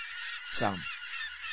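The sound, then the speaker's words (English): A single loud seagull squawk drops sharply in pitch over a steady rushing background noise, like wind or surf, on a sunny afternoon, with no one talking. “I can't hear for all the seagulls.”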